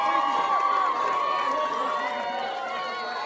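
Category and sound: crowd, crowd applause and cheering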